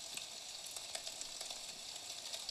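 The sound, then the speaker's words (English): Steady video game rain: a dense, crackling hiss of countless tiny droplets, bright and even in level, with scattered sharper pattering spikes and no voices. “It's raining in game right now, which I think that's a good thing.”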